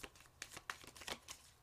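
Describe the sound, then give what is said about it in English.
A deck of cards being shuffled, with a quick run of soft, papery riffling snaps and flutters coming in uneven bursts, fairly quiet and with no voices. “I said one more and then I'm still shuffling.”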